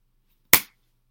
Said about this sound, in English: What was the clap? What was that? To rile myself up.